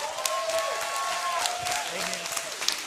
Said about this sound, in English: Come on, somebody. Can you get on your feet and put your hands together